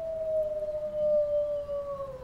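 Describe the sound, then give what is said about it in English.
A wolf howls in one long, unbroken note that slowly sinks in pitch, with a fainter higher overtone and a low rumble underneath. No one speaks. “You don't want another pack of wolves infringing your space and taking away what you think belongs to you, right?”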